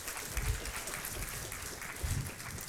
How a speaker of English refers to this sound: Why don't we welcome Will? Give him a round of applause.